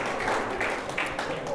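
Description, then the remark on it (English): A crowd applauds steadily, a dense wash of many hands clapping at once, loud and sustained for the whole moment with no voices standing out, applauding a middle school graduate who has stood up at a graduation gathering. “Everybody give him the applause that he's due.”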